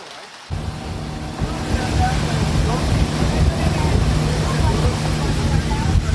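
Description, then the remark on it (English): A motorboat heading to Moín, Costa Rica, zooms down canals, its engine droning loudly and steadily with a constant low hum and a rushing wash of wind and water beneath it. “I'm on the boat now to Moín. It's very loud and it is amazingly beautiful.”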